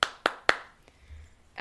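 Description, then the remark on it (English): Three sharp, loud hand claps in a quick, even rhythm as a round of applause for the bear 747, each with a short ringing tail, followed by a faint fourth tap before a voice begins speaking. “Just a round of applause, quickly, for him.”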